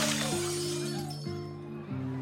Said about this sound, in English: At the Leek and Sons funeral home in Chicago, where they take the body, so many fans gather, there's a crush, and the glass doors collapse inwards.